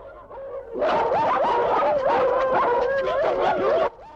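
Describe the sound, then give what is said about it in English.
A dog barks and yowls loudly for about three seconds, its overlapping, wavering cries running together almost continuously with no talking, then stopping abruptly. “We're surrounded. My dog, though.”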